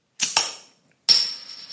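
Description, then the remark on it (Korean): A can of beer, one commonly called Maisel, being opened: two quick sharp cracks, a brief pause, then a louder pop followed by a steady, fading fizzy hiss. No voices are heard. “요거는 탄산이 많이 없나 보다.”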